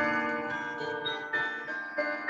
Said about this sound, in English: Sorry. I think that must be their clock. Is that Oh, yes, it is the clock.